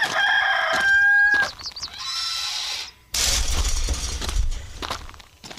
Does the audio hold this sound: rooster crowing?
yes